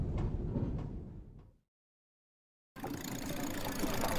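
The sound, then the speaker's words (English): A loud, rumbling car engine amid street traffic fades away into a brief silence, then a dense wash of busy traffic noise cuts back in abruptly and stays loud. “watch out for the buckboards in that car. Thanks. Let's get to the other side of the street. Sure is a busy area.”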